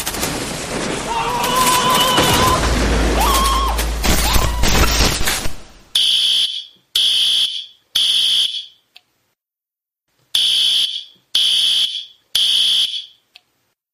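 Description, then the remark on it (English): A loud fire alarm sounds in a repeating pattern of three shrill beeps, a pause, then three more, following several seconds of dense, noisy commotion. “Well, I guess we do have a fire alarm.”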